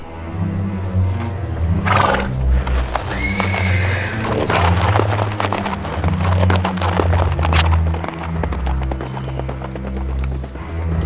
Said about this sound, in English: Let's get these horses and put them far behind us.